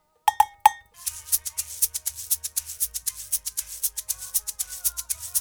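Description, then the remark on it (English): A cabasa, part of the percussion a producer added to the mix, rattles in a steady, quick rhythm of dry, scratchy bursts over a soft low bass line, preceded by three short, ringing pitched hits at the start. “There's a cabasa.”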